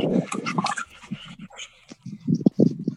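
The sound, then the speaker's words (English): A dog whines and whimpers in short, uneven bursts, with a few sharp yips mixed in, at a park, fairly loud, with no one talking. “I'm here at the park with Tiger Dog. Tiger Dog is running around.”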